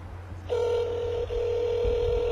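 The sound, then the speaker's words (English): A telephone ringing tone plays over a speakerphone as a caller rings in, a steady electronic beep that starts abruptly, breaks off for an instant, then resumes and holds, with a low hum underneath and no talking. “They're calling us, but it's still ringing.”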